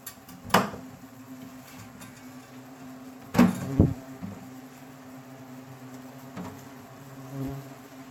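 Asian hornets at a nest in a bathroom in Jersey buzz in a steady, close drone that hums on throughout, broken by a few sharp knocks or bumps near the start and middle. No one speaks.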